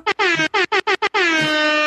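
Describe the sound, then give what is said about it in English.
A loud foghorn blares in a rapid series of six short blasts, then holds one long, sustained bellow to the end. It is brassy, with no voices. “Like, I wish I had a foghorn that could just scream that at people.”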